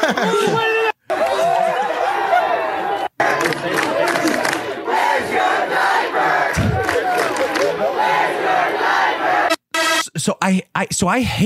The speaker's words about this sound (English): The one with all the crowd screaming, go home, go home.